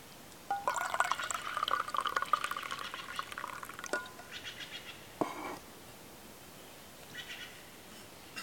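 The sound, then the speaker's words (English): Coffee is poured into a cup for about three seconds, a steady splashing stream with a faintly rising tone as the cup fills, followed by a couple of light clinks and soft handling sounds. “Let me get a little more coffee”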